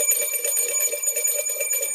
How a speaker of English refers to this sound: It's a Friday bell ringing extravaganza.